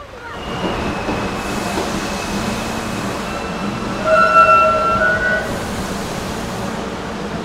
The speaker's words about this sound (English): This is a Brooklyn-bound 2 express train. The next stop is Fulton Street.